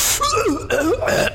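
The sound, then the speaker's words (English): A person vocally imitates a cat's pre-furball hacking: three loud, rasping retching bursts with wavering, gargly pitch in quick succession, no other voices. “Just that horrible pre-furball sound.”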